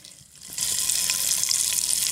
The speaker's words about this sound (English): So, option one, someone cooking a bacon using an iron.